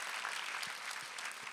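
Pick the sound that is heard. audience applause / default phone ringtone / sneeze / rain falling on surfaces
audience applause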